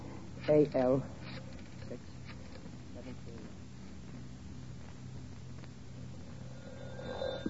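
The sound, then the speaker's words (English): A telephone rings in two short, loud bursts near the start of a call to the YWCA, then a low, steady line hum carries on with only faint background noise. “Phone the YW.”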